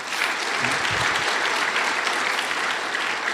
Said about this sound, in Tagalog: Pakilakas nyo naman yung palakpak nyo.